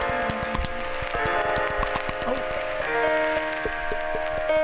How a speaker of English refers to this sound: Oh. Raindrops. Yeah, it sounds like rain.